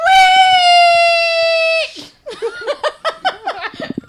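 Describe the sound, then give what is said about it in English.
A person imitates a marmot whistle on a count of three, with one loud, steady, high-pitched call held for nearly two seconds, then breaks into a rhythmic burst of laughter. “We will both make our best marmot sound.”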